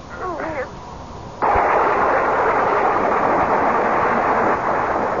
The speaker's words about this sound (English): I was literally galvanized awake by a bolt of lightning which must have hit the tree. It was dark, and the thunder continued to grumble menacingly, so with what wits were left to me, I fled the dream and the storm and ran pell-mell for home.